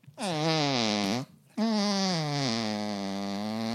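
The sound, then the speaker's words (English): A woman imitates a fart with two loud, buzzy blasts made by mouth, a short one followed by a longer drawn-out one, with no talking. “And she farts, doesn't she?”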